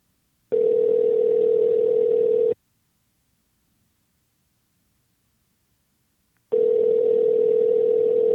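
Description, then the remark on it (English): A telephone ringback tone as someone is dialed up: two long, steady buzzing rings of about two seconds each, separated by a four-second silence, with no voices. “And I'm going to, speaking of champs, I'm going to dial in the champ right now. Let's see if he answers.”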